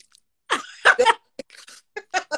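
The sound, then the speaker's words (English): Wet sucking and squeaky mouth noises, like someone drawing air through the teeth to clear out food, come in a string of short bursts with brief pauses between them. “chew a lot of that and then try and do this with your teeth.”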